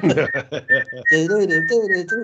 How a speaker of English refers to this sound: and you'll be so surprised that when you finish and you know you're doing the horrible thing of rolling up cables and packing away, the amount of people you hear whistling it.